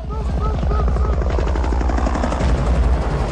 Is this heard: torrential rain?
no